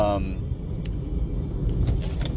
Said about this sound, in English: I gotta move over for this semi truck.